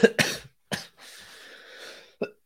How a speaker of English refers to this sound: Oh, God. Cough it out. Cough it out.